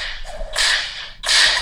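A whip-crack sound effect sounds twice in quick succession: sharp, loud, bright bursts with a hissing tail, nearly back to back, with no talking.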